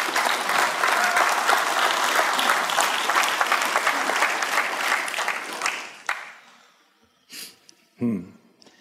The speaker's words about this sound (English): Amen. Let me hear it with a good clap offering.